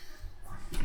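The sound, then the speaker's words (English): A headphone cable is unplugged, giving a short burst of crackly static and a couple of sharp pops over a low rumbling thump. “I unplugged my headphone.”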